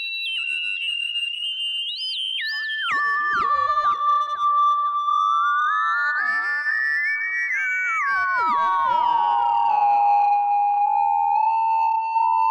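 Sustained tones from a self-oscillating filter on a modular synthesizer glide and step in pitch, run through a Clouds module for echoing delay repeats and a lush reverb wash, steady and fairly loud throughout with no voices.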